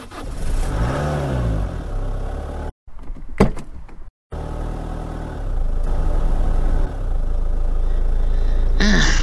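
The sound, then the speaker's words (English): A car engine rumbles and revs, cuts out briefly, then cranks and turns over into a steady, fairly loud idle. There is no talking. “Have you had a deflated tire or a foreign material as a guest in your tires while on the road or when you are just about to start your engine?”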